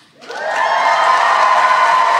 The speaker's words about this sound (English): We're going to get really used to hearing people cheer after we introduce ourselves.